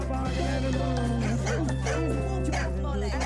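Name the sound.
dog barking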